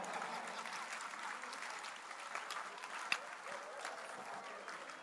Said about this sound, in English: Please, pretend you didn't hear and clap for the Lord.